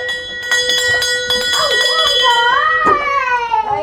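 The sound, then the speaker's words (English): A hand bell rings with quick repeated shakes, its bright metallic tone hanging in the air, then keeps sounding faintly while a child's voice talks over it. “I'm gonna throw that bell away.”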